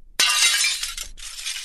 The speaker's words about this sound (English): I break the glass and the plan is find another guest.